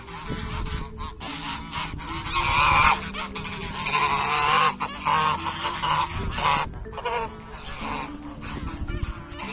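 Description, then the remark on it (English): A flock of about 50 large geese in a park honks loudly and continuously as they run at high pace, many overlapping calls forming a dense, raucous chorus with no pauses. “Imagine 50 rather large birds running towards you at high pace, not to destroy you, but just to say hello and have something to say about it.”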